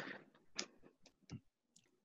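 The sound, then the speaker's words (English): Soft, irregular typing on a computer keyboard: a handful of light, crisp key clicks tapped at an uneven pace, fairly quiet, with no one talking. “Because I can hear you typing”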